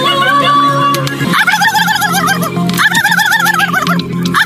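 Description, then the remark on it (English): A contestant at a turkey call competition in France imitates a turkey gobble, producing loud, warbling bursts that rise and fall in pitch, repeated in rapid rolling waves with a brief pause between them. “And here are just a few contestants doing their best to sound like turkeys.”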